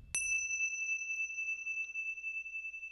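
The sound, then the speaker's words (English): A single very light strike of small Tibetan Ting Sha cymbals rings out clearly, its pure high tone sustaining steadily and slowly fading over several seconds with no other sounds. “So a very, very light ting of the Ting Sha bells.”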